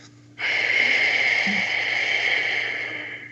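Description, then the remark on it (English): A single long, audible exhale through a lightly tightened throat, done as a breathing exercise meant to sound like a cat purring: a steady, airy, slightly raspy hiss that starts abruptly and holds for about three seconds, easing off slightly at the end. No talking. “And as I'm exhaling, I will be exhaling audibly with a lightly tightened throat. Basically, it will sound in a way like cat purring.”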